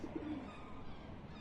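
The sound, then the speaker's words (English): Soft pigeon cooing, a low throaty burble at the start that fades into a steady background hiss; quiet and brief, with no voices. “Your pigeons managed to turn on the gas and flood my apartment with noxious fumes”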